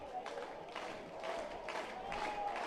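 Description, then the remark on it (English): A baseball crowd at the Love Shack in Ruston cheers and applauds during game four of a series, its noise swelling in steady rhythmic bursts about twice a second, like fans clapping in unison over a constant roar. “The crowd comes alive here at the Love Shack in Ruston.”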